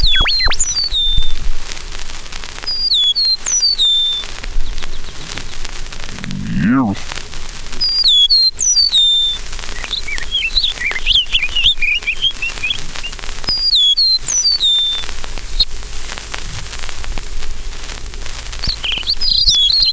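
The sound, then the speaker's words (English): An eastern meadowlark on a telegraph pole sings high, clear whistled phrases, repeating them every few seconds against a steady outdoor background hum, with a brief low rustle midway. “Telegraph pole is an eastern meadowlark, greeting the world in high, clear whistles that seem to fit the phrase, "It's sweet to me," or "The spring of the year."”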